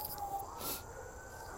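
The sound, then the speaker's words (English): Faint emergency sirens, many of them, wail steadily outside, a thin sustained tone floating over a low background hum with no one talking. “Good gracious, there's a lot of sirens.”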